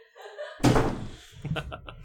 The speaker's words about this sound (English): So we just shut the door now.